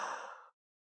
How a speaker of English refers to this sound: It's actually because we go into survival mode and think that the other person is stealing all the oxygen. I keep yawning.